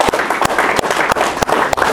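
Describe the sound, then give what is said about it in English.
An audience applauds everyone in the room for their help, loudly and steadily, a dense wash of many hands clapping with a few sharper, louder claps standing out at a quick, irregular rhythm, with no talking. “So let's just kind of look around And let's give everybody else in the room a round of applause for the help.”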